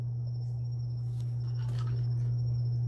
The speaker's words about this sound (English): Crickets.